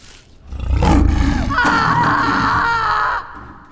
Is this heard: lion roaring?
yes